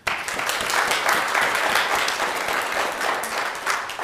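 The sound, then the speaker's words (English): A church audience claps steadily in sustained applause as a clap offering to God and in thanks to the office bearers, dense and even in loudness throughout, with no speech over it. “So we just give all the office bearers thanks, and we give our God a clap offering at this time.”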